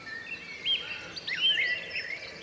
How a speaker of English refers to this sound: And the sound of the song, bird song down here in the village, and I say village, it's barely a hamlet, it's half a dozen houses.